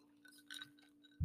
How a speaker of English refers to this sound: Sorry, I'm chewing a piece of ice by accident. I was drinking iced coffee.